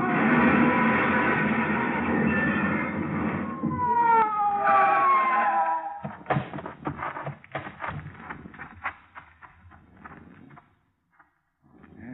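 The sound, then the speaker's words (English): A police car siren wails in rising and falling sweeps over a loud roaring engine for several seconds as it pursues another car along a curving road, then cuts off into a burst of clattering, banging impacts that fade toward silence. “Whoever it was paid no attention to our siren, but we pulled closer, hugging the curves by using the whole road.”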